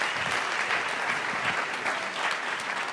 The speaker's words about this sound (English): So if you would give them a warm applause as they come up here.